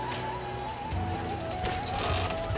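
Horse hooves clip-clop at a steady pace as a horse pulls a cart with a guide along a dirt road over a dune toward a trading village, over a muffled hum of background ambience, the footfalls moderately loud throughout.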